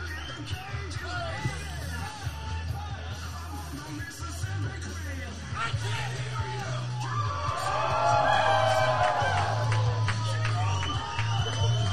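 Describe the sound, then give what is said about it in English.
A crowd at Munchie's 420 Cafe in Sarasota, Florida cheers and chatters for a band coming out of the Tiki Hut, with scattered whoops and yells over a steady low hum. The noise swells louder in the second half before holding there. “Look at the crowd loves …, just like us, guys.”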